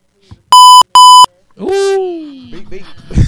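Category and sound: sound effect, censor bleep tone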